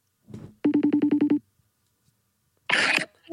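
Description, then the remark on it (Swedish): A quick run of about eight evenly spaced electronic phone beeps as a number is dialed for an outgoing call, loud, with brief bursts of noise just before and shortly after. “Ringer du henne nu?”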